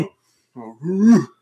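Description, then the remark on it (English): A dog lets out a short howl: a brief low whine that rises into a louder, drawn-out tone before cutting off, with no one talking. “He's already got the howl going.”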